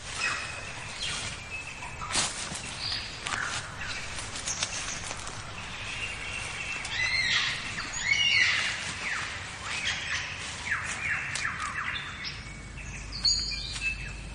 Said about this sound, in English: What bird has the most elaborate, the most complex, the most beautiful song in the world? Well, I guess there are lots of contenders, but this bird must be one of them. The superb lyrebird of Southern Australia.